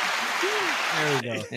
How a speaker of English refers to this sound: You want claps? I got claps.